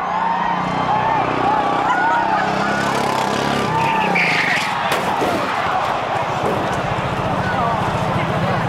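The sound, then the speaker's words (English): A small go-kart engine whines and skids as the kart spins out, then a sharp crash about halfway through as it lands in the crowd, hitting Atlanta traffic reporter Captain Herb Emery, with the crowd shouting and clamoring loudly before and after the impact. “From the audio, you can probably tell the car spins and lands in the crowd, hitting famed Atlanta traffic reporter Captain Herb Emery, who had taken over MC roles for Jack Arute.”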